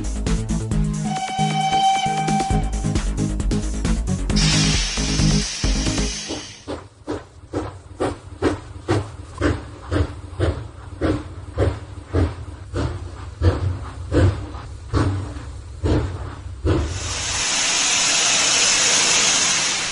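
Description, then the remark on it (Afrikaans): The Tinie Trein steam train's whistle sounds over a low rumble, then a burst of hissing steam and steady rhythmic chuffing as the engine arrives, and a final long, loud hiss of released steam. “Kom nou maat, skuif nader, luister bietjie daar. Is dit dalk die Tinie Trein wat ek daar gewaar?”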